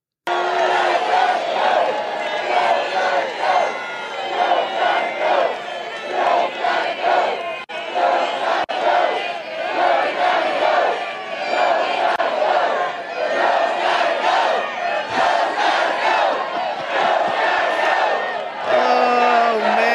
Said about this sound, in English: Crowd over there for Donald Trump, all responding to the gaffes our current president, which never seem to end. Crowd chanting in the background, Joe's got to go.